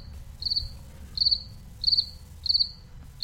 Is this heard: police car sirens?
no